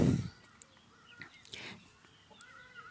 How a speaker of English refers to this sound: The sounds of the birds are around us. We don't need to go looking for it. We don't need to go to a bird sanctuary. there's enough all around us for each and every one of us to enjoy.